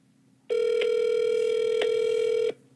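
A steady, buzzy telephone tone on a call to an unavailable 1-800 number holds for about two seconds, with a few faint clicks breaking through it, then stops abruptly. No one speaks.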